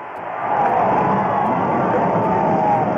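A dense roar of NASCAR race car engines starting at a 4th of July race in 1984, on the command given by President Ronald Reagan, swells up within the first half second, then holds as a steady, rumbling drone with a faint whining tone layered over it.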